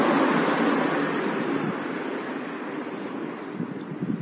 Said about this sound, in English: But there's no one else here, and my taxi isn't here yet, so I'm really sorry, but I need to do this as soon as this car's gone past.